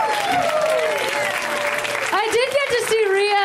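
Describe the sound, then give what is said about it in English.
A show audience applauds steadily for Rhea Butcher for the full few seconds, a loud, dense wash of clapping, while a voice talks over it. “Rhea Butcher, ladies and gentlemen, let's hear for Rhea.”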